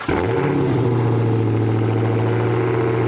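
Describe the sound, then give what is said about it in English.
A Dodge Challenger Hellcat engine fires up with a quick burst, then settles into a loud, deep, steady rumble, throbbing evenly with no one talking. “Here's what a Hellcat sounds like, by the way.”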